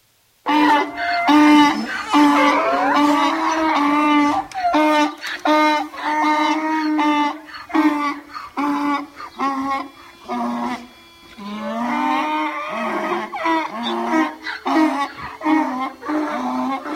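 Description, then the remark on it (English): Several donkeys bray loudly, their strained, wailing hee-haws rising and falling in long overlapping bursts with brief pauses, continuing throughout with no talking. “Speaking of funny, how about a donkey crying over the death, or donkeys crying over the death of a friend?”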